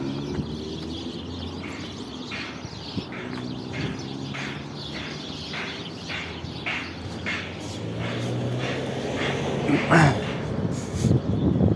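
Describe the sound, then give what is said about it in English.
A dense chorus of many birds in a tree chirping and twittering together, a steady stream of overlapping calls that swells slightly toward the end, over a low rumbling murmur of outdoor background noise. “Okay, so I'm not sure if you could hear that, but it's like a tree and there's a whole bunch of birds in there and they're pretty loud, but it sounds pretty cool, like a whole bunch of birds.”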